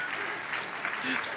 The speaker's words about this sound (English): And Spencer's killing it with those videos, man. Those videos are awesome. I would, you can clap for him.